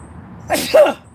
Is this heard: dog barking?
no